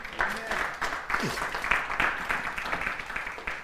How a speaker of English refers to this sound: I know this teaching series is a little longer than usual, but is this information helping you guys? Let me know by claps if this is helping you.